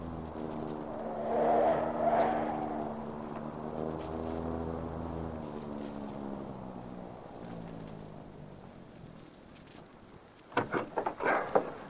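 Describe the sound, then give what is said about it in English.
A car engine hums steadily as the car slows and turns into an alley in darkness, its pitch rising and then sinking, followed by a few sharp scraping rattles near the end. No one speaks. “I'll turn into this alley.”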